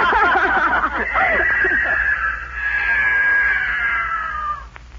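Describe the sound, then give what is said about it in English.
A mountain lion heading into the woods lets out a long, loud, high-pitched scream that wavers at first, then holds a steady, piercing wail for several seconds before cutting off. “The mountain lion, he's going into the woods.”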